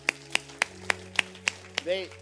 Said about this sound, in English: Let's give them one more round of applause.